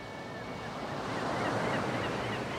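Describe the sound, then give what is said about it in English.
Steady roar of sea waves washing onto a beach at high tide under a full moon, near a Coast Guard station, a broad continuous rush swelling slightly mid-way, with a faint high tone near the start and no voices. “The age-old sound of the sea.”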